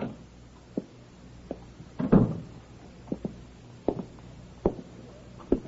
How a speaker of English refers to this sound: A half hour passes. Suddenly, the apartment door opens.